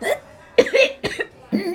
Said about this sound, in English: Oh, there, there. Cough it up, love. Cough it up, chicken.